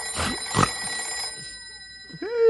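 An old-fashioned telephone bell at a ranger headquarters rings loudly in two quick clattering bursts, its metallic tone lingering afterward before a brief vocal sound near the end.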